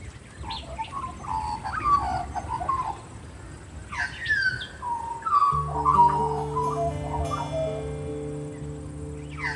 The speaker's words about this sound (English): Swooping like a devil or singing like a diva, the magpie can be hard to miss.